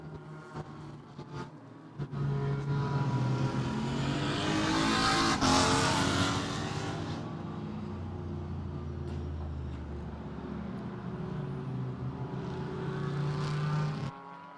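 Race car engines drone steadily on a circuit two hours into a race, with two safety cars out, one car roaring loudly past midway with a rushing swell before the engine noise settles back to a continuous hum. No one speaks.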